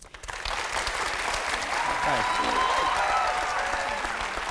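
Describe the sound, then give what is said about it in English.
A crowd bursts into steady, sustained applause for actor Russell Tovey, who plays Joe Pitt in Angels in America, with a few faint voices and whistles rising briefly through the clapping. “I'll clap you. I'll give you a clap.”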